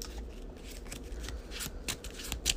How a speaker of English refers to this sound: I had Scene of the Crime. Doesn't gonna help me anything right now. Shuffle it back into my deck.